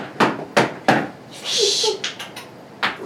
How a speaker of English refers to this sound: Mrs. Morris heard him chuckle, and then his steps up the walk to the front door.